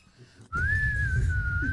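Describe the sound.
A person imitates a whistling sound with their mouth: after a short quiet moment, one high, thin, steady whistle note starts abruptly and holds loud until the end.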